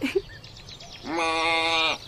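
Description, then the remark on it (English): A goat on grazing grounds lets out a single loud, wavering bleat lasting about a second, preceded by a few faint, softer animal calls in the background. “And in the hot late afternoon, Natho follows Daphnis out onto his grazing grounds and asks Daphnis about goats.”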